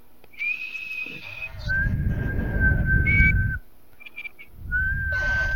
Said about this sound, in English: Everyone whistle in 3, 2, 1.